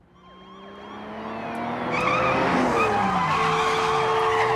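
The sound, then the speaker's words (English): A loud car chase in a TV show: tires screech and skid in long, wavering squeals over roaring engines, the noise building steadily and staying intense throughout, with no voices. “Holy car chase.”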